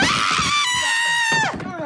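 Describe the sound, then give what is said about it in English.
Actress Lynn Marie Stewart, as Charlie's mom, lets out a long, loud, shrill scream of shock when Charlie tells her Frank killed a seagull, sustained at a high pitch before breaking and falling off at the end, with faint noise underneath. “And Lynn Marie Stewart, her scream was awesome when Charlie tells her that Frank killed a seagull, the way she just flips out.”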